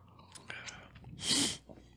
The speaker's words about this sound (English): let me get a sip too.